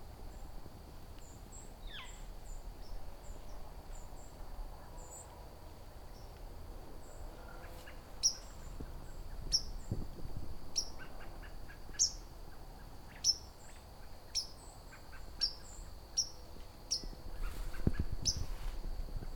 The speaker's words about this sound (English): It's a white-throated sparrow. That pink kind of call, or a peep, however you want to pronounce it.